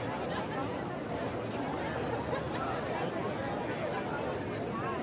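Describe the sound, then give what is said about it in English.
A dense murmur from a large crowd gathered for the "10 Minutes Large Donald Worship" swells in after half a second and holds steady and loud, many voices blurring together, while a thin high tone slowly glides downward in pitch. “Wow, what a crowd. Look at these people.”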